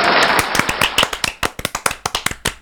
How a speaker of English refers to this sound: I love that this is a thing now. I've missed that applause. I have missed that, yeah. We like an applause.